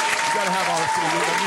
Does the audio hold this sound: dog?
no